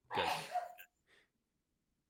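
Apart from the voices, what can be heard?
sneeze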